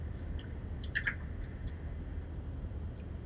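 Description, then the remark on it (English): A quiet sip of water: a brief cluster of small wet mouth clicks and a swallow, then a low steady hum with no talking. “Before I do, let me get some water.”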